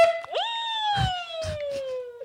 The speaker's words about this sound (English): I can't believe we've just got two buzzers for fun.